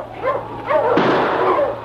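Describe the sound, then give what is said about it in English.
Several sled dogs bark and yelp in quick, overlapping bursts, fairly loud, with excited whining tones over a steady low hum and a sudden burst of noise midway. “Watch out for that lead dog there”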